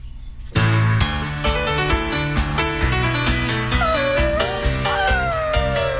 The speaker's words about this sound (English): Listen, it's a puppy. He has to pee-pee. Cause he's stuck in the house and no one's home.